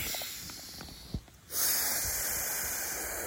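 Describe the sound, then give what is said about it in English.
Airy breathing with a brief quiet pause, then a long, loud, rushing breath that fills the rest of the moment, as in a slow deep-breathing exercise. No one speaks. “I'm going to do a couple of breathing.”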